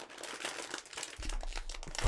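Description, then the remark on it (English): A heavy-duty plastic snack bag, full of air and printed with an image of chicken with seasonings, crinkles and crackles as it is pulled open, a steady run of sharp, bright rustling bursts with a low thump near the end. “It's like a heavy-duty bag.”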